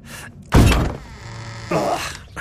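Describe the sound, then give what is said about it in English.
A hidden cellar door behind a plant unlatches with a loud thunk, then swings open on a long, low creaking groan before settling with a second dull scrape, with no one speaking. “And look, another door. I knew there was something behind that plant.”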